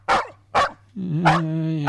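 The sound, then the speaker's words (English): A dog, Arson Dog, barks twice in quick, sharp bursts, then lets out a longer, drawn-out whining yowl with another bark mixed in, fairly loud. “At least Arson Dog is happy.”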